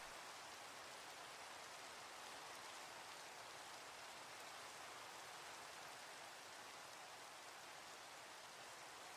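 Steady, unbroken rain hissing evenly for the whole stretch, a dense bright wash with no voices and no changes in loudness.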